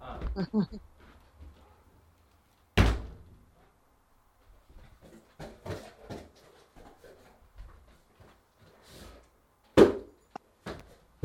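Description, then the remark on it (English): A back door slams shut with a sharp, loud thud, followed later by a second hard bang, with faint muffled voice sounds and shuffling in between. “I left my back door open and there's like June bugs flying in.”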